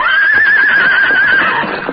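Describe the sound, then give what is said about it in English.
The Lone Ranger's horse Silver lets out a loud, quavering whinny lasting over a second as it races away from a butte at his command, the other horses following, with faint hoofbeats and galloping noise rumbling underneath as it fades. “At the Lone Ranger's command, Silver raced away from the butte, the other horses following him.”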